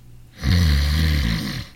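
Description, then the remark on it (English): A single long, loud snore from a hospital patient the night before his operation rumbles with a deep, rattling low tone and strong harmonics, swelling quickly and holding steady for over a second before trailing off. No one speaks. “Oh, it's like being married to a steam shovel nurse.”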